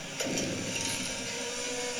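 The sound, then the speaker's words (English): An old chainsaw, lubricated, fuelled and repaired, runs steadily for about two seconds: a loud, buzzing engine drone with a rough, raspy edge that holds constant throughout. No voices are heard. “He has a chainsaw.”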